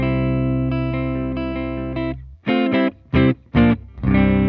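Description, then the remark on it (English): A clean electric guitar played straight through a Twin Reverb amp rings out a sustained chord for about two seconds, then plays a series of short, punchy chord stabs in a steady rhythm, fairly loud, with no talking. “So for the audience, we're plugged into the Twin Reverb. Yes. So maybe yes. Give them a clean, like, you know, just straight amp sound.”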